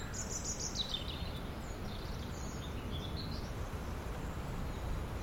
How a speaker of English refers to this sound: Still mainly only robins singing. Yeah. With the occasional blackbird.